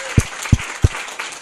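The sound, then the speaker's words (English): Audience applause for speakers at an OA meeting: a steady wash of many hands clapping, with a few louder, sharp claps standing out at a regular pace through the short burst. “Let's give all of our speakers another round of applause.”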